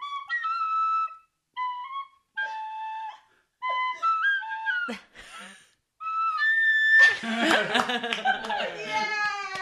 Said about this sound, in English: Is that a penny whistle? Sure is.